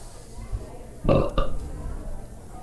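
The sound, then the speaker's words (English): A loud belch bursts out around the middle, a deep rumbling eructation in two quick surges, with quiet background noise before and after. “Number two, was that a belch?”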